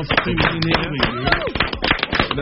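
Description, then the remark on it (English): A crowd on the show What's Up Tonight applauds guest Muscle Team Fuzz with dense, steady clapping that runs throughout, mixed with some cheering voices underneath. “Give Fuzz a big round of applause.”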